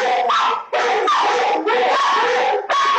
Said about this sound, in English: Sorry for people who are just hearing dogs barking.